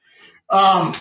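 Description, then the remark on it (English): A single loud bark from a female dog, drawn out and slightly whiny, comes after a brief faint sound at the start. “You're not going to bark during the whole podcast.”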